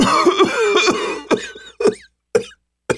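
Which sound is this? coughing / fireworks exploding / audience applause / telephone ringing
coughing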